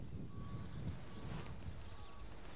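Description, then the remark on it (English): Sand pours steadily into a fine glass jar during a demonstration of how layers form, a continuous grainy hiss and rattle that stays fairly even in loudness for a couple of seconds, with a few faint high tones in the background. “Now I'm going to pour in some sand.”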